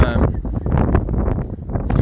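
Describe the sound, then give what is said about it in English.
Steady, loud wind buffeting a microphone, a low rumbling roar that fills the whole couple of seconds, with a muffled voice partly buried beneath it. “Oh, it's getting windy here.”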